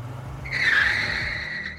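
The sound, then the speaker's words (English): A car's tires screech in a loud, sustained squeal that rises in after half a second and slowly fades, over a low engine rumble as the vehicle speeds off. “I sprinted for the car, jumped in, tossed the book on the passenger seat, and got out of there.”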